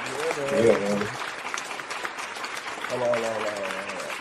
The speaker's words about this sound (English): The longest clap ever. I was going to say, that might be a record.